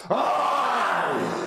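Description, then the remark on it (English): A human voice imitates a monster's guttural scream, a single sustained, rough growling roar that starts abruptly and holds loud for over a second before slightly fading, with no words spoken. “Its mouth gapes open as it lets out a guttural scream.”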